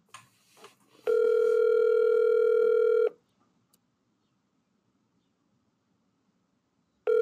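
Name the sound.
phone call ringing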